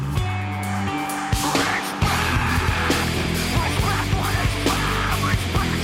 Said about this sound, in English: He's screaming. Is he screaming into a megaphone that's not pointed at the mic?